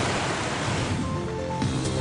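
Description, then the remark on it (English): A loud, rushing water splash fills the whole two seconds, a dense hiss like a wave crashing, with a brief extra surge near the end. No voices. “Let's splash into headlines.”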